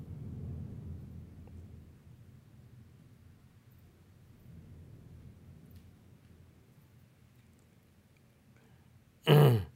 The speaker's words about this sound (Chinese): 就是这是昨天是听到外面的这个音乐的声音，今天是雷声啊，哇